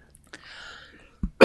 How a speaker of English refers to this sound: I was clearing my throat, not a cough.